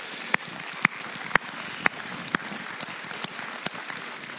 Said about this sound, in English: Though even though not all of them are here, we need to thank them for their faithful service. Can you give them a round of applause, please?